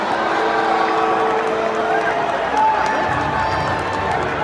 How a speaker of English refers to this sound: You notice he's getting booed.